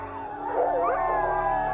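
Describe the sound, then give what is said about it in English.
A pack of sled dogs howls in chorus, several long, wavering voices overlapping and rising and falling in pitch, steady and fairly loud throughout with no talking. “Mushers say the main pack will do this for the group as solidarity, but also to remind the group of where they are, of where to return to.”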